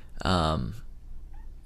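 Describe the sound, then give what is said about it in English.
A cat gives one clear, drawn-out meow, wanting to be let out, its pitch sliding downward before it fades. “I think I'm gonna need to let my cat out.”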